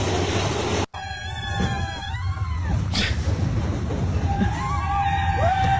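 A recording of riding the Thunder Mountain roller coaster at a Disney park: a constant rumble of wheels on track, high screeching whines from the cars, and riders cheering and shouting throughout; a brief dropout cuts the sound near the start.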